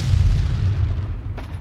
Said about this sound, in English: The battle rages on, and the sound of gunfire fills the air. The ground is stained red with the blood of the fallen, and the air is thick with the smell of smoke and death.